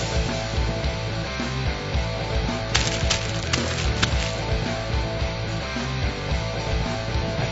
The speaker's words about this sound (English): The crumpling you heard is the sound of my football predictions being torn up from our last Beat the Schmoes football picks last Friday.